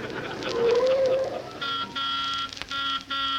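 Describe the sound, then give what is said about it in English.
A driver waiting outside Miss Smith's house honks the car horn in sustained, buzzy blasts broken by brief gaps, after a shorter, slightly rising tone at the start. No one speaks. “Driver, you didn't have to blow the horn.”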